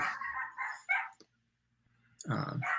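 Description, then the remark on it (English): Dogs bark and yelp loudly in a noisy, overlapping burst, go quiet for about a second, then break into another frantic round of barking. “The dog circus is happening again.”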